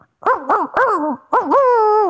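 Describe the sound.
A person's voice imitates a dog barking, with two quick yaps followed by a longer bark and a final drawn-out, whining bark. The imitation is loud and carries no other talk.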